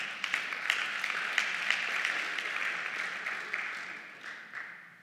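An audience claps in a sustained, dense round of applause for God, the many hands blending into a steady patter before gradually tapering off.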